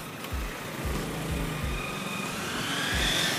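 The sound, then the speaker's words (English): A car engine idles with a low, steady rumble and regular throbbing pulses, set in a continuous wash of traffic noise, with no voices. “So, yeah, the car.”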